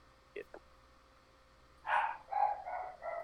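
Dogs bark after hearing somebody: two quick, short yips, then a pause and a run of four or five louder, rapid barks that keep going to the end. No one speaks over them.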